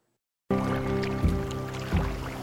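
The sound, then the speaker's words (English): After a brief silence, a steady boat dock ambience sets in: a low droning hum over lapping water, with a couple of soft knocks like a hull bumping against the dock. “Okay, I'm looking for, is Boat Dock the one? Boat Dock, yeah. It's the same as as the sound clip.”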